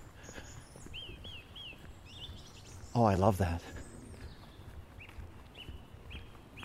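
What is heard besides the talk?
birds singing outdoors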